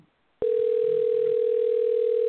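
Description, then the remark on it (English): An electronic telephone ringing tone from a call placed on the Fantasy Football show on Soul Kitchen Radio cuts in abruptly after a brief quiet moment and holds as one steady, loud, unbroken hum through the end while waiting to be answered, with no voices. “I'm waiting on this phone to be answered.”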